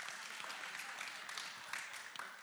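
A crowd applauds steadily for a couple of seconds, many hands clapping into a dense, even patter at a moderate, sustained level with no voices.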